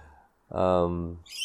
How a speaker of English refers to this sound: So that's, there's a parrot right here. I don't even know what these are called. You can hear it though.